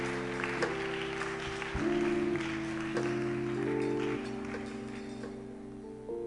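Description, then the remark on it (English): A church audience claps steadily during a service for the whole stretch, a dense, continuous patter of many hands layered over sustained organ-like chords that shift every second or so. “Keep clapping.”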